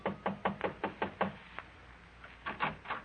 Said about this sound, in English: An hour after phoning her, you drive to a modest little apartment building on Fountain Avenue near Coenga. Curious, but still cautious, you knock lightly on the door.